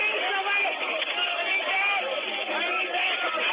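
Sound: crowd screaming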